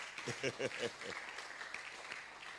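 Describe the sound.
An audience claps in a steady, somewhat subdued wash of many hands, with a voice speaking over the first second before the clapping continues alone.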